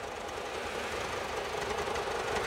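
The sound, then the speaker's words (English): A loud, continuous buzzing drone with a rough, rattling texture, like a diesel engine made of swarming insects, holding steady throughout with no voices. “A buzzing noise. Like a diesel engine made of bugs.”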